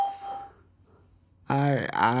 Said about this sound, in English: Hello, welcome to Skype call testing service. After the beep, please record a message. Afterwards, your message will be played back to you.